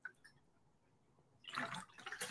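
A short burst of sloshing water, as from a water bottle being tipped or drunk from, follows a second or so of near-quiet. It sounds fairly loud, with a gurgle near the end.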